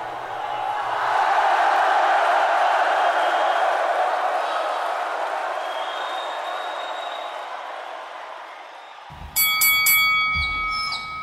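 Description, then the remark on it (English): A large crowd roars steadily, then near the end a loud, bright ring-side bell clangs several times in quick succession, starting the round over the continuing crowd noise. “Oakley did not like that bell.”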